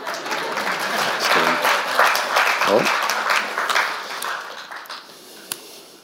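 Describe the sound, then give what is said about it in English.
A church audience at a Christmas service claps steadily in a dense, loud wash of applause that gradually thins toward the end, with a brief voice or two rising through the noise. “Yeah, keep clapping for a second because these were supposed to be lit.”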